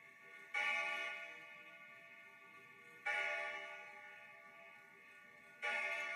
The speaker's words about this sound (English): The sounds of the orphanage bell rattled the old building to its wooden bones.